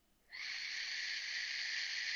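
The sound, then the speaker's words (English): A 1.8 ohm vape coil whistles on airflow, with the bottom airflow wide open and the top airflow open halfway: a thin, airy, high-pitched tone starts abruptly and holds steady without wavering until the end, with no voices. “It's a little whistle, yeah.”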